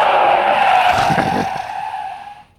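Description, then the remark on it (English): A loud, sustained tire screech as a car swerves and skids for the second time, the squeal holding steady before fading out over a couple of seconds, with engine rumble underneath and no voices. “That's a two-time swerve.”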